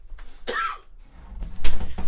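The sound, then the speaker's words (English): A harsh coughing fit: several rough, chesty coughs in quick succession, with a brief pause before a louder final burst of hacking. No one speaks. “As you cough your lungs out.”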